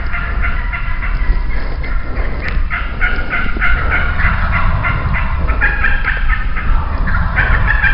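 Wild turkeys approaching during a live hunt gobble repeatedly and loudly, their rattling calls overlapping in bursts throughout, over a steady outdoor background rumble with no talking.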